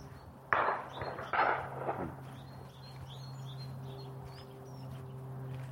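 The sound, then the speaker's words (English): A nuthatch calls with repeated short, bright notes amid the thin chirps of tits on a ridge along the top of the downs, while two shotgun shots from a shooting party surrounding a copse thud early on over a steady low hum. “That is a nuthatch up there.”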